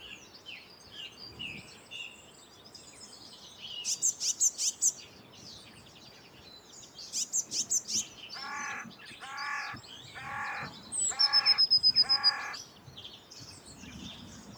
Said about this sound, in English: So that one's got squeaky Blue Tit, interrupted by the carrion crow, and then a little bit of Blue Tit song.